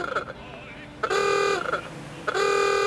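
A car horn from a Bentley coupe with a 4.5-liter engine and Wayman body honks twice in loud, sustained blasts: one about half a second long, then a second that is still blaring when the sound ends.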